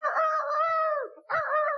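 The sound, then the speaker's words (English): A loud crowing call with a long sustained note that drops off, then a short second burst, a man's voice doing a rooster imitation: the wrestler the Red Rooster, excited and going crazy. “The Red Rooster is going crazy. He's so excited.”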